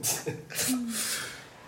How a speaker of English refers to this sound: Let me just get that cough out the way. And now we're good to go.